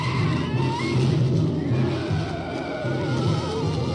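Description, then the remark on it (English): A shrill, wavering screech of a giant spider in a film rises and warbles over a dense, rumbling wall of noise as people hose it down with DDT, with no one talking. “They're sitting there hosing this fucker down, and you hear the screech again. Here she comes.”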